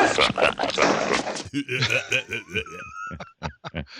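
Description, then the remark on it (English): A voice mimics the burping of the 'herpy', a little creature that runs off past the camera in a close-up: first a rough, raspy gurgle, then a quick string of short, croaky burps with squeaky high overtones, ending in a few clipped bursts. “That sound it makes? Oh, yeah. the burping that little was the herpy.”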